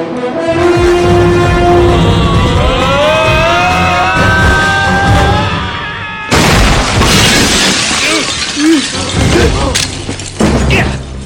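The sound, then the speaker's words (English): A steady, droning tone with shifting pitches runs for several seconds, then gives way to a sudden loud crash of breaking glass, followed by scattered rattling and clattering debris. “Oh, the glass grabbed my dick.”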